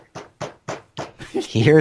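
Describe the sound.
A voice imitates Wonder Woman banging on a rock: four evenly spaced, punchy thuds in a steady rhythm, followed by a louder, drawn-out vocal sound.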